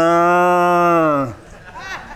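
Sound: cattle mooing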